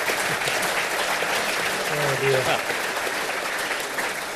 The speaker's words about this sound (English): Round of applause for the Q&A. Superb.